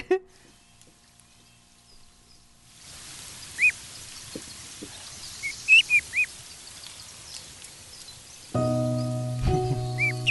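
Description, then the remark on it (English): A few short, high peeps from a little duckling with a comic magazine sound in scattered bursts over soft background hiss. A steady, buzzing tonal drone then cuts in near the end. “Little duck finds Donald Duck magazine or comic.”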